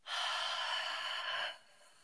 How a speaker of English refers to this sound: So go ahead and do a nice inhale. Hold for one, two, three, four, five, and then exhale.